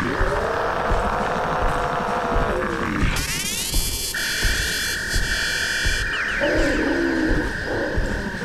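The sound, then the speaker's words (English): A low growling roar gives way to harsh electronic zaps of Dalek energy weapon gunfire, with rising whining sweeps and a steady high buzzing tone that hums on for several seconds. “That was Dalek gunfire.”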